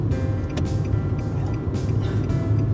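car interior road noise

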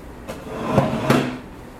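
oven door opening

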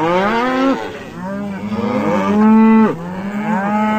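cow mooing sound effect

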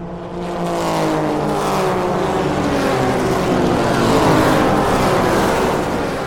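race car engine revving

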